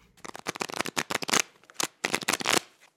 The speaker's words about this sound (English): In response, a card slid toward me. A second slid past to the player on my left. The dealer continued in silence until a pair of cards lay face down in front of each of us.